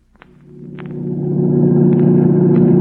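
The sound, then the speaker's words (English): A car engine rumbles low and steady, swelling louder as it accelerates hard to about 90 with the accelerator only halfway down, with a few faint clicks early on before the roar settles into a sustained drone. “Look, we're doing 90 and I only have it halfway to the floor.”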